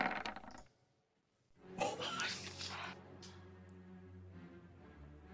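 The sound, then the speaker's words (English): Dice clatter and tumble across a hard tabletop in a quick rattling burst, then settle while a low murmur of voices and room noise continues underneath; the dice are rolled for damage and come up 11 and 9. “I rolled an 11 and a 9!”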